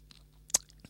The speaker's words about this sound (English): As I take a sip on me. One moment, let's not rush this.